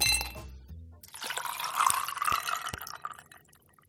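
A brief ringing glass tone, then liquid pours steadily into a glass for a few seconds, fairly quiet, with the gurgle rising as it fills. No one speaks.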